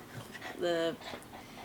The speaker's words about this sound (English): Basil's barking at his monkey.